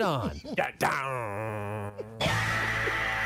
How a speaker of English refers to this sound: Wait, can we go back to the beginning of that? There was a moan or something.